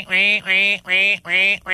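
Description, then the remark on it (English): A duck quacks five times in quick succession, loud, each nasal quack evenly spaced in a steady rhythm with no other sounds around it. “We should have a duck quacking.”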